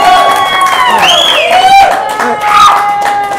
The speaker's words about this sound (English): Can I get a round of applause for anybody here who's pro-choice? Pro-choice.